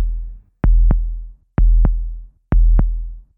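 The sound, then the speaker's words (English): A loud, low heartbeat thumps in three steady lub-dub pairs, each double beat deep and booming with a short rumbling tail, alone with no talking: a crystal heart beating in a castle tower. “We got into the castle and started looking around, when we heard a low, strange thumping sound.”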